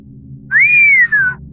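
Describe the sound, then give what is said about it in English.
A single long, low whistle from a boy standing by a car's front fender, rising briefly and then sliding slowly downward with a tiny break near the end, clear over a faint low hum. “He waved, came trotting over like he didn't have a care in the world, stopped short just off the front fender, and blew a long, low whistle.”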